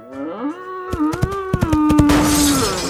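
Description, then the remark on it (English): A bull knocks a whole section of Royal Copenhagen fluted porcelain off near the door. The dishes crash and shatter in a rapid burst of sharp smashes, ending in a rushing clatter of breaking pieces, all beneath the bull's long, loud, low bellowing moo. “he knocked off that whole section of Fluten Royal Copenhagen!”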